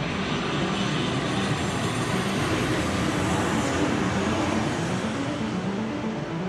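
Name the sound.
airplane engine in flight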